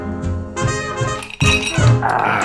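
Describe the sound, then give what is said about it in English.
Glasses clink together in a toast, three or so bright, ringing chimes overlapping one another and lingering with a shimmering, high-pitched tone, with no talking over them. “Say along with me, whatever your every glass. Every your glass. Put a toast in it.”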